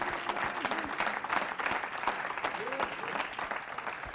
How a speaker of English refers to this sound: Clap your hands all over the building to the Lord.